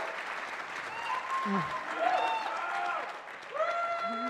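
An audience ovation: dense, steady applause from a large crowd, with shouts and whoops rising above the clapping throughout.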